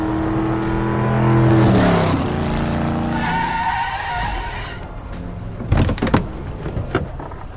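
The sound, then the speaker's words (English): A car engine growls loudly as tires skid and screech to a stop, the rumble fading before a few sharp mechanical clicks and thumps of doors clicking open, as the car Carface, speeding across the top of the snow, halts in a winter wasteland. “Carface growled to a halt inches from where we stood, doors clicking open, his lethal metal expanse like a car-shaped void carved into the winter wasteland.”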